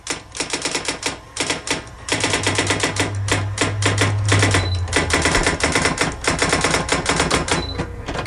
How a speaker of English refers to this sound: A typewriter? It is. It is a typewriter.